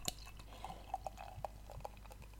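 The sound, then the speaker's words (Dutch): Beer being poured into a glass: faint, irregular liquid drips and tiny fizzing pops and clicks scattered over a couple of seconds, with no voices. “Zo, ik hoop dat de ASMR van het bier het goed doet.”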